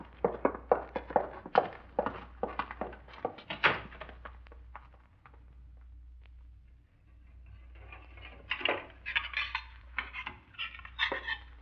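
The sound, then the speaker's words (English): Dishes and cutlery clatter in a quick flurry of sharp clinks and knocks, fall quiet for a few seconds, then start up again in another busy round. “Look, I got dishes to do and this joint to clean up.”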